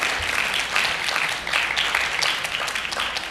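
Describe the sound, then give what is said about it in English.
An audience applauds steadily to welcome a visiting ministry partner coming up in person, dense overlapping hand claps forming a sustained wash of noise at moderate loudness, with no voices standing out. “Clap. Yeah, give it up”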